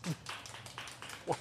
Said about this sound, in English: The polite golf clap.